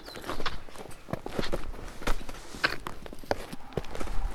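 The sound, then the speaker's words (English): A woodpecker pecks at a tree, an irregular series of sharp, dry knocks and taps, some louder than others, continuing steadily over a soft outdoor background with no talking. “That woodpecker is going to town on that tree.”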